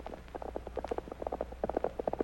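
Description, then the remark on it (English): A horse gallops, its hoofbeats pounding in a quick, driving rhythm, many rapid thuds in a row at moderate volume over a steady low hum, with no voices. “From out of the past come the thundering hoofbeats of the great horse Silver.”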